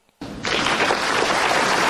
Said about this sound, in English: I want to give a big round of applause, if at all possible.